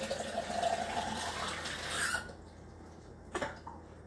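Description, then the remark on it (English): Water pours steadily into a glass for a refill for about two seconds, its pitch rising as the vessel fills, then stops; a single sharp clink follows shortly after. “Let me get my a refill of the water.”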